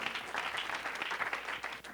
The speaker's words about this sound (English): Let's clap our hands like we mean it.